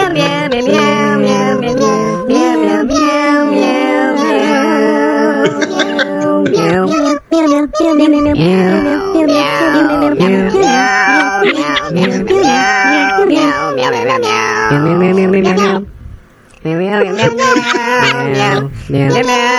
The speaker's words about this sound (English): They are a group of musical cats, apparently, who have submitted some songs to play during this special. And here's the first one.